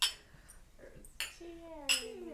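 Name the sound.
glasses clinking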